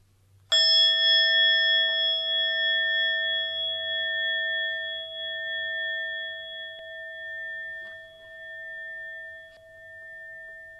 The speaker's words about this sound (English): Ring the gong once to let us know we're beginning, and then we'll be moving from section to section.